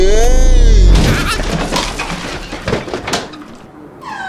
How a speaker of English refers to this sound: Oh no! I'm falling! I'm falling on the table!